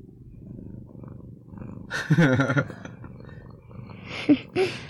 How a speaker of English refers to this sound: Well, since we're a Reformed family, I guess it makes sense that our cat Luther is the mascot of the podcast. What do you guys think? Yeah. Hold on. Can you hear him purring?